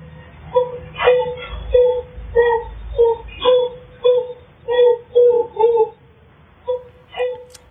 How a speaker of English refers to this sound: She'd never heard her cry before, but she's making these like gorilla wailing sounds. It's so sad.